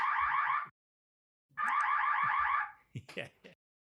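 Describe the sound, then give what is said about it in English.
Two loud, harsh electronic fire alarm blasts from the fire system at City Hall being tested while new fire panels are installed, each pulsing rapidly in a buzzing tone, separated by a short silence, followed by a few brief mumbled voice fragments. “We took a pause there because you may have heard the alarms were testing the fire drill. Testing the fire system.”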